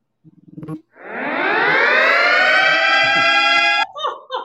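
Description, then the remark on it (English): A loud alarm siren blares for about three seconds, its pitch sweeping upward and then holding steady, with brief bits of speech just before and right after it. “Disregard my alarm error.”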